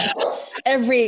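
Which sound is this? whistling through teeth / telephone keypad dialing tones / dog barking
dog barking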